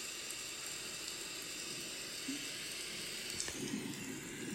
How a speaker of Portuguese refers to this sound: Ouça a água.